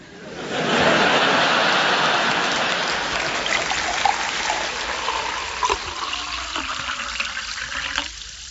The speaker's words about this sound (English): If there's anything more evocative of the calm tranquillity that is Buxton than cool, natural spring water